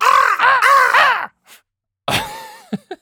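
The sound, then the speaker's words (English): A voice imitates crow caws: a long, harsh, rasping caw rising and falling in pulses, then after a pause another strained caw and two short clipped croaks, loud. “We only do it as, like, ravens. Or as crows.”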